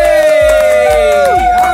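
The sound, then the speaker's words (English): A loud, dense burst of audience cheering and whooping at the Roz and Mocha Show Fans Choice Awards, with a steady low thump pulsing underneath roughly twice a second, continuing without a break. “The clapping has to continue on through the whole thing.”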